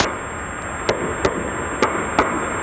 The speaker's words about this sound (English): And investigators have just shared for the first time the mystery banging sounds heard underwater during last June's frantic search for that missing Titan submersible. At the time, these noises sparked hope that the passengers could be saved.